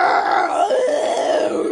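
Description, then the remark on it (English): A person voices a drawn-out, growling roar imitating a fire-breathing winged creature, one loud continuous rasping cry lasting under two seconds, with no other sounds. “But we're not going to tell you what game that's from, because there's plenty of games that have roar and flapping wings and fire.”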